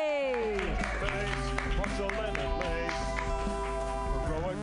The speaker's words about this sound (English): Clap wildly right now for